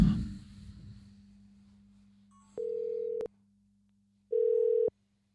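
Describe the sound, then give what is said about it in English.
A phone ringback tone sounds twice through the speaker of a phone turned up, as a call is placed to a guest: two steady electronic pulses separated by a pause, after a brief thump and low background hum. “Should we call our special guest? Oh, yeah, let's call our guest. The phone? We just turn the phone up?”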